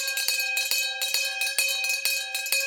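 A theatre's three-minute interval bell rings loudly on and on by itself before the musical The Magician's Elephant, calling the audience to take their seats; its bright metallic tone is sustained through a fast, steady rattle of repeated strikes, with no voices.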